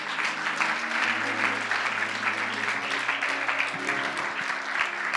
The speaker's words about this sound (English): Amen? Amen. Let's give God a round of applause, church.